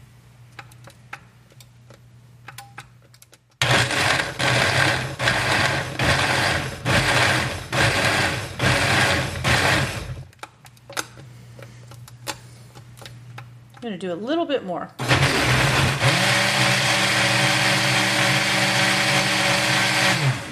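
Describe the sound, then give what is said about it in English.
A blender roars through two loud, sustained runs blending a marinade for boneless beef ribs, the first with a slightly pulsing, choppy whir and the second a steady high-pitched grind, with a person speaking briefly in the pause between them. “Okay, so I'm gonna put this on and blend this, and then I'm gonna drizzle this and douse this over the top of my boneless beef ribs.”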